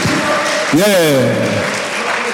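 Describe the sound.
Steady audience applause for a woman who has just spoken, a dense crackling wash of clapping, with a voice calling out over it partway through in a rising then gradually falling tone.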